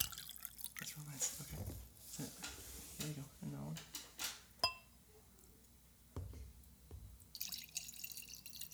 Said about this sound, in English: why are you peeing on the table? I thought that's what you were doing. Oh my god, no. Oh my god. I was pouring wine.